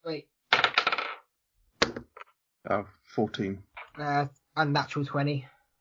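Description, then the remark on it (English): Dice clatter onto a hard floor in a quick burst of sharp rattling clicks, followed by people talking. “Dice on the floor.”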